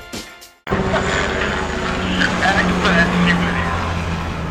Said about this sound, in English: Ooh, that was a nice chopper sound we just picked up.